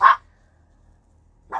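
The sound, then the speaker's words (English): Two sharp, high-pitched yaps from chihuahuas, one at the start and another about a second and a half later, with quiet near-silence between them. “I lived in the self-help section at the Bodhi Tree bookstore in West Hollywood, and we have barking chihuahuas.”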